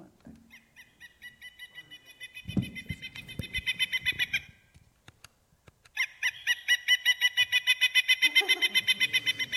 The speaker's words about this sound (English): You know, I'll give you a hint. He likes to get bugs out of the bark of the tree. A woodpecker? Woodpecker, yeah. Woodpecker. Okay, a pileated woodpecker.